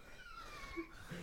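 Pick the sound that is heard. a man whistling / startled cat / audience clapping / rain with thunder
startled cat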